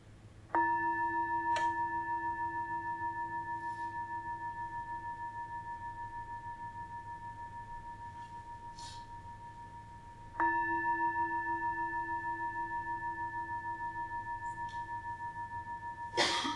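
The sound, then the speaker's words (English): A meditation gong is struck twice to end a meditation, about ten seconds apart, each strike blooming into a long, steady, pure ringing tone that fades very slowly. A third strike begins just as it ends. “And now I will ring the gong and we can come out of the meditation.”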